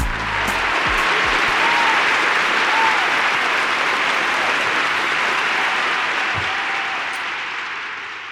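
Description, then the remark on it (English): Sustained crowd applause welcoming the hosts of a dating show, with dense, steady clapping that holds at a loud, even level for several seconds before tapering slightly at the end, with faint cheering mixed in. “Here's more applause.”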